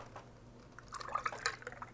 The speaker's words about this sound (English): Let me pour my lemonade. I got a glass here ready for some lemonade.